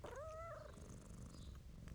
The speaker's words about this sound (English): The lady stroked Blackie's fur and rubbed her ears, and as the cat liked it, she purred.